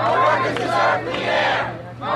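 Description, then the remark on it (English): A large crowd at a public hearing on the smoking ban at New York's City Hall shouts and cheers together in a loud, continuous roar of many overlapping voices, swelling in waves with a steady low hum underneath. “A recent public hearing on the smoking ban drew a large, passionate crowd to New York's City Hall.”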